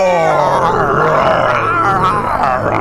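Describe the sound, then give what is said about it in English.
A crowd of human voices roaring together in imitation of lions, a loud, sustained, growling chorus of guttural cries lasting a few seconds without pause. “You are supposed to be lions, so roar!”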